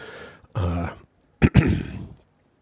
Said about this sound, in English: burp right there. Did you hear that? So disgusting.